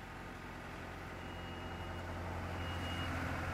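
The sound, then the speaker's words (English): Heavy machinery reversing drones steadily at a construction site at Páirc Uí Chaoimh in the early afternoon, as workers attach thick chains to a roof section for a crane to lift. A deep engine rumble fills the background with a faint, continuous high tone above it. No voices. “And workers are attaching thick chains to a roof section. When the crane lifts that on top of the roof, all work on the site stops.”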